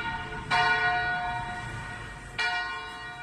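cathedral bells ringing

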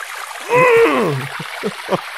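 pouring

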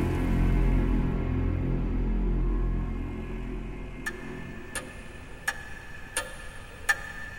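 clock ticking

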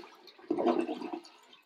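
toilet flush

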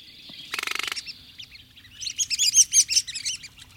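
red-cockaded woodpecker calls

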